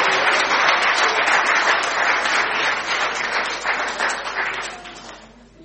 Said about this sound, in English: Should we give them both a round of applause?